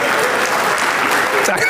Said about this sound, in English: Why did you clap like that? That made me laugh.